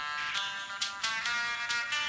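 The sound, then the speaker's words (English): A mobile phone rings with a steady, bright electronic tone, pulsing in quick repeated beats. No one talks over it. “It was Farco's phone, and answering it, he clomped back into the foyer for a better signal”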